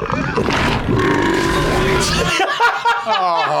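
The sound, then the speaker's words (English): A loud, drawn-out, guttural burp from a dog burping maggots rumbles for about two seconds, rough, then gives way to a voice with chuckling, wavering tones. “by burping maggots all over the place.”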